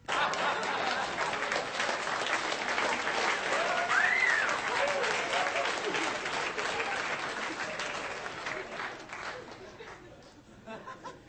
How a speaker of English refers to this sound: Just clap for a dead baby. You applauded a dead baby.